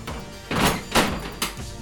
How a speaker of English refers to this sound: Now, you do hear the shutter drop. First one and the second one. Hmm. But it is quite a distance away from you in Sector D.